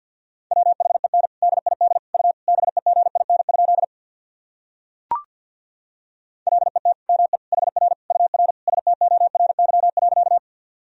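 Fast Morse code at about 50 words per minute, sending practice sentences made of common words and abbreviations: a single mid-pitched tone keyed in rapid dots and dashes, two long runs separated by a few seconds of silence broken by one sharp click.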